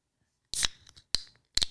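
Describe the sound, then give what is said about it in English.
An Alani energy drink can is cracked open: a sharp metallic snap with a brief fizzy hiss, followed by two more quick crisp clicks from the tab, with no talking. “I'm gonna crack an Alani.”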